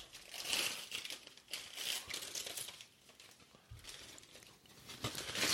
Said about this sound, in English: I have a feeling there's got to be something to this pint glass. So I'm going to open the box.